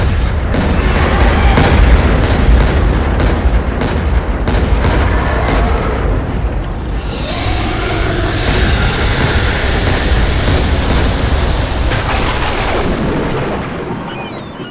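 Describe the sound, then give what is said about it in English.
Loud, thunderous booming blasts strike again and again over a constant heavy rumble. They come thick and fast at first, ease off in the middle, then flare up once more near the end. “That last second after the thunder, my power ballooned as the thing let go, vanished.”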